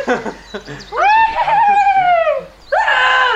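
A brief burst of voices, then a loud scream held for nearly two seconds with a slowly falling pitch, cut short as a second scream begins.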